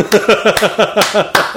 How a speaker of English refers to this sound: Hang on. I gotta do a slow clap here.